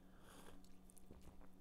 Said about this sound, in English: Let me take another sip of my coffee.